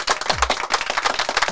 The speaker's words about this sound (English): Also, it is Jane Lynch's birthday. Actress Jane Lynch. Let's give her a round of applause, too.